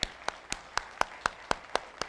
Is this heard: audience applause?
yes